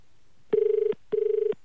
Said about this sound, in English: Does Kentucky Fried Chicken Maroochydore cater for lefties? Let's dial away.